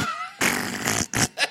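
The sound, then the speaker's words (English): A voice imitates a grunting fart: one long, raspy, buzzing blast, then two or three short sputtering bursts trailing off, loud with no talking. “It would be a grunt fart.”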